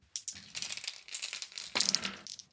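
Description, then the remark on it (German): Dice clatter and roll across a hard tabletop, a bright burst of rapid clicks that tumbles for a couple of seconds, with a final sharper rattle before settling. No one speaks. “Soll ich den 20er Würfel nehmen?”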